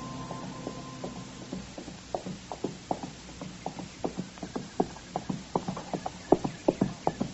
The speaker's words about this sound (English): And just then I heard a horse coming along the trail, and I stepped back and waited.